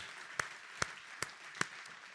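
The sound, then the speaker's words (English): An audience applauds in a hand clap of thanksgiving to God and the ladies, a steady wash of many hands clapping, punctuated by four sharp, evenly spaced louder claps about every 0.4 seconds. No voices are heard. “Let's give God and the ladies a hand clap of thanksgiving today.”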